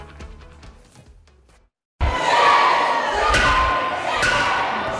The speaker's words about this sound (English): The sergeant at arms will clear those who can't follow the rules. Protesters shouting at lawmakers, some of them had to be removed after this vote came down.